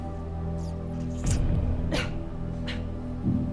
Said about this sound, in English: Finally, there is a cough.